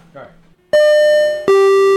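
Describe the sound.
A loud two-note ding-dong doorbell chime: a higher bright tone rings and sustains, then a lower tone follows. A brief murmur of voice comes just before the chime.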